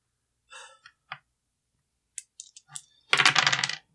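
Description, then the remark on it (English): Dice clatter on a table: a few sharp, scattered clicks and taps, then a loud, rapid rattling burst as they tumble and settle on a natural 12. No one speaks. “That's a 12, natural 12.”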